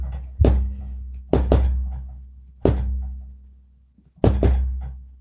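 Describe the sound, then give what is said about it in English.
Several heavy, hollow knocks on a surface, spaced unevenly with pauses between them, each thud ringing out briefly. Fairly loud, with no talking. “Knocking.”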